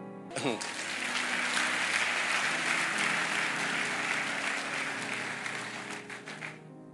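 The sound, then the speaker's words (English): A large audience breaks into sustained applause, a dense wash of many hands clapping at once, starting abruptly, holding steady for several seconds, then thinning out toward the end. “Sometimes when I say clap, it's just to allow you to digest something.”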